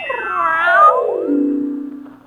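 A single long, drawn-out meow from a cat named Kitty, fairly loud, rising in pitch then sliding down into a low, whiny wail before trailing off. No one speaks.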